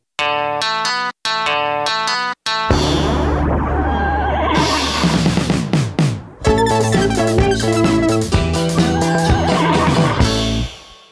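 A loud, brash musical jingle that opens with choppy stuttered bursts, then a horse's warbling neigh rises over the music before the tune carries on with bright, dense synth chords.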